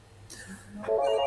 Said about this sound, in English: To what extent, if any, sorry, phone's going in the background here. I'm trying to stop it.